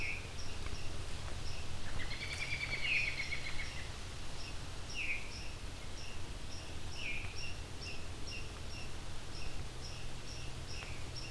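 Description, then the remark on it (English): Thin, high-pitched squeaky notes of a black-and-white warbler's song come in a few short bursts, set against a steady buzzing insect drone and a low background rumble. “Think we have a black and white warbler?”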